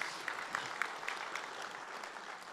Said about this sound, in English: And we should applaud because that was some awkward silence there.